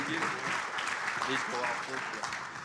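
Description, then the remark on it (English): An audience applauds steadily as a group of performers is invited back up, a dense wash of clapping hands that stays fairly loud throughout, with faint voices mixed in underneath. “So just give them a big round of applause, please, and show us support as he invites them back.”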